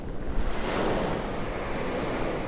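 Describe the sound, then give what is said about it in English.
Ocean surf on Brighton Beach washing in with a broad, steady roar and hiss, rising slightly then easing back as the wave rolls out, with some wind noise mixed in and no voices. “But the sea always sounds the same, I told her. A wave comes in.”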